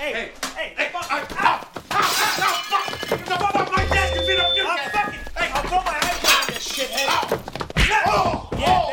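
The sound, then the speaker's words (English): An iPhone gets smashed: a few sharp thuds and cracking hits land amid loud, heated shouting, with a brief high electronic tone sounding partway through. “You fucking broke my iPhone, you asshole.”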